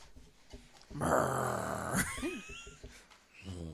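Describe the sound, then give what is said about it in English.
A person imitates a growl, a rough, sustained guttural rumble lasting about a second, ending in a rising, squeaky yelp-like flourish, then brief quiet breaths. “I like when people growl in my ear. I don't growl in there because it sounds like a fucking hyena or some shit.”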